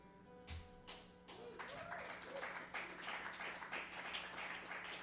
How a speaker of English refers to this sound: I had no idea that was going to be applause worthy. Thank you.